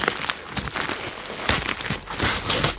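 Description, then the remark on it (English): A gift package containing a Subway gift card being opened, with steady loud crinkling and crumpling of paper, brief tearing rips and crisp rustles over about three seconds, no talking. “So, why don't you open this next one? It's got your name on it.”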